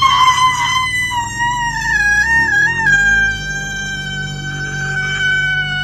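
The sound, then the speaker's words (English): A woman lets out one long, loud, high-pitched scream that holds steady for several seconds, wavering slightly in pitch before trailing on without a break. “No, we got some great audio of a scream here, and I want you to listen to it thoroughly, examine the scream, and then tell us why is she screaming.”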